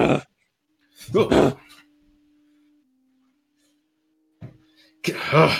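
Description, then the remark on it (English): A person voices a few harsh, rough bursts imitating an aggressive dog growling and snarling, loud, with a faint low hum in the quiet gaps between. “This dog's beastly!”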